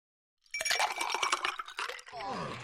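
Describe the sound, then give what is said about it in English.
Glasses clink and rattle together, then a drink is poured steadily into a glass during cocktail hour, its gurgling tone shifting as it fills. “Pour me one, you know what? Pour me two.”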